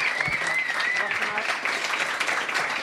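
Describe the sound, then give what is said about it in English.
An audience at Meltdown Comics applauds the creators of Key and Peele steadily, a dense, continuous wash of many hands clapping at an even loudness, with a few whoops and cheers rising briefly above it. “Please all, give a round of applause to the minds behind Key and Peele.”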